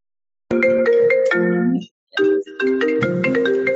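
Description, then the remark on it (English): A mobile phone ringtone plays a bright electronic melody, fairly loud, breaking off briefly before the tune starts again and continuing to the end, with no voices. “Sorry, my phone was ringing.”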